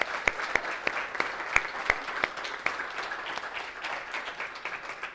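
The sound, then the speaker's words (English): A church audience applauds, giving God applause after a new member is accepted for baptism: dense, crackling clapping from many hands, with a few sharp, louder claps standing out early on before the sound settles into a steady, fading patter. No one speaks. “Let's give God applause.”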